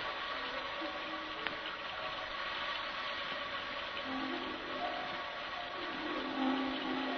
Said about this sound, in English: If only the thunder and lightning would stop. And the rain.